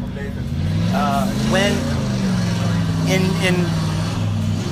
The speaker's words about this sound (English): Do you think they can hear me over the monster truck? Yeah, we're good. Are you sure? Oh, that yeah. dude is ripping. Yeah, I can't believe he didn't get stuck.